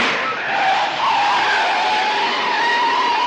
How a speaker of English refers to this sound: And at precisely that moment, the car pops a tire and skids to a stop.